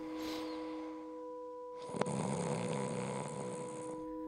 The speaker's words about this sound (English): I feel really bad that I snore, and I'm sad that it means that we can't share a bed.